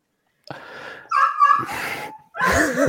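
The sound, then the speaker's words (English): A dog whimpers and yips in a few high-pitched bursts: a breathy whine, a drawn-out squeaky cry, then a sharper yelping whine after a short pause. “Oh my God, this dog.”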